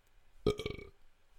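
A single loud, low burp with a rattling, throaty texture, bursting out suddenly and trailing off after about half a second, followed by quiet.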